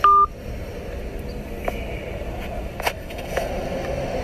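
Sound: telephone tones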